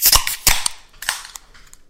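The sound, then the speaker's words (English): Cans of Daughters Brewing Beach Blonde Ale crack open one after another: three sharp, bright pops, each trailed by a short airy fizz, then a few smaller clicks and hisses. No one speaks. “All right, let's crack these, boys.”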